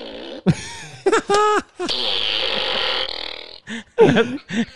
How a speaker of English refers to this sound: Oh, and then a minion laugh sometimes. Yeah, see? It's a little fart gun for you. Fart blaster.